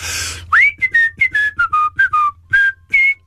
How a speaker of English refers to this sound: Okay, let's have a little whistle. I'm going to do some whistling. And then you've got to try and whistle, okay?